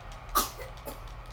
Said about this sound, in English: Yeah, she's fine. I think she's sneezing.